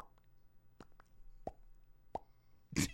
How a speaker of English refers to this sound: Suddenly, she is awakened by a dripping sound.